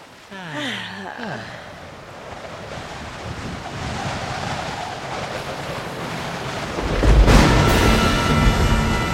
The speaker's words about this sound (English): Just enjoy the gentle swells of this lovely, peaceful ocean.